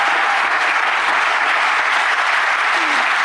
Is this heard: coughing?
no